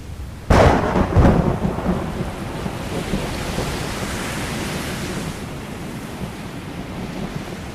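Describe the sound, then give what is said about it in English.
A sudden loud thunderclap breaks in, then rolls into a long rumbling roar, with steady storm wind and rain-like hiss sustaining underneath until the end, as lights flicker in the sky. No voices. “Their eyelashes tear through cornea against storm winds, and flickering lights in the sky suggest orgasmic friction.”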